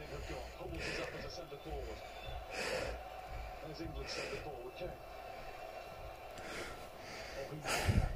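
Heavy, tense breaths drawn in and pushed out every second or two by a person watching the 92nd minute of an England football match, over a steady low murmur like a broadcast or crowd.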